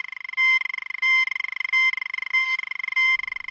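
A sci-fi hailing-frequencies communicator signal: a rapid, buzzy electronic warble of bright layered tones, broken every second or so by short steady beeps, repeating evenly and loudly with no voices.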